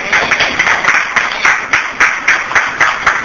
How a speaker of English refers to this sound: And now I want you to give yourself a hand clap of praise.